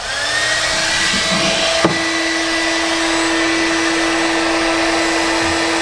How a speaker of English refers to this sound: This is just a small hairdryer purchased from a common store. 1,875 watts. Oh, that's my goodness. Slightly over the capacity of the inverter in the system. But you could probably see when we turn the dryer on and flip it to high.